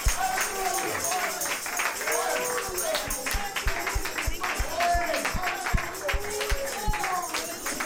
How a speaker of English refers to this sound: Oh, foot stomp, hand clap. Amen.